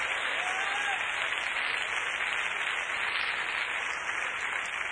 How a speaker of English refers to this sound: Put your Bible down and give the Lord a great big hand clap of praise right now. Thanksgiving unto God for his power and his presence.